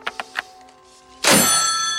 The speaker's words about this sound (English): Here's him hanging up the phone real mad.